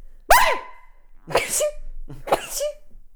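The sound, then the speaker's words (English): Three sharp, explosive sneezes from a person allergic to cats, one about every second, each a loud burst that quickly fades, with no talking in between. “Sorry, I need to sneeze.”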